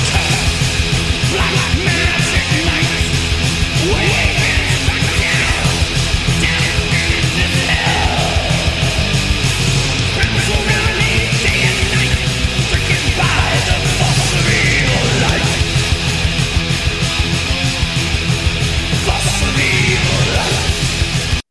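Harsh, screamed vocals ride over a loud, dense wall of distorted guitars and pounding drums, continuous for the whole stretch with no pauses.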